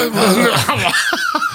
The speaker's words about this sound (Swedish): Så han står och svett liksom. Han måste snart få harkla sig. Vänta, vi ska fånga det här nu. Det unika ögonblicket.